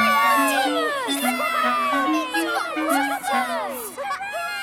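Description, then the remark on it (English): A group of children at Vicarstown Station cheer excitedly on seeing Thomas in his cheeky monkey costume, many high-pitched voices overlapping in rising and falling shouts for several seconds, with a steady low tone running underneath. “At Vicarstown Station, the children cheered when they saw Cheeky Monkey Thomas.”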